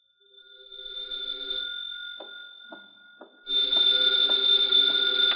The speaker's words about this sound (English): Then there was the phone. There was no mistake about that. That began late this afternoon.